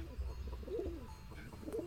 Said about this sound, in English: I am a beautiful swarm of doves. Beautiful white doves.